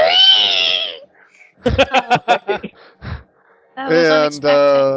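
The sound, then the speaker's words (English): A person roleplaying a character lets out a loud, drawn-out vocal screech, then a burst of choppy, rhythmic vocalizing, followed by another sustained wailing cry, like someone imitating an animal's scream, as the character arches its back on top of a demon corpse. “And just sort of arch my back and scream...”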